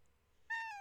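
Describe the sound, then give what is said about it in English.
A single short meow from Merlin the cat, with a clear harmonic, slightly falling tone, moderately loud after a near-silent moment. “You want to talk one more time? Say hi, everybody. Meow.”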